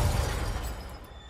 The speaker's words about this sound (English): At his urging, the limo races faster and faster, swerving in and out of traffic. And then it crashes.